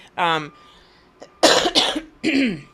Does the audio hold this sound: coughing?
yes